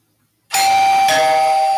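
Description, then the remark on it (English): A two-note doorbell chime sounds as someone is let in, after a moment of silence: a bright, sustained higher tone, then a slightly lower one that rings on. It is loud and clear, with no voices. “Yeah, I'm letting you in.”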